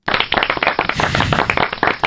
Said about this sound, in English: Sorry, you don't need to give me a round of applause.